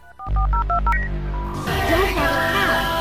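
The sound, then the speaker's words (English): A quick run of about six crisp touch-tone dialing beeps from a cordless landline phone, over a low hum, then giving way to a louder, noisier burst of sound. “Because he's talking on a cordless phone, like a cordless landline.”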